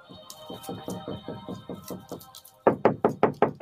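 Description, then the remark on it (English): A steady series of knocks on a door, about ten fairly soft raps, then a louder, faster burst of five or six sharper knocks. No one speaks. “Someone's knocking at my door.”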